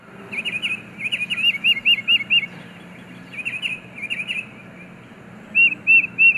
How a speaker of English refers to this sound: Alarm calls can even trigger a response from non-avian listeners. The tufted titmouse, for example, is a songbird whose anti-raptor warning cries send squirrels and chipmunks running.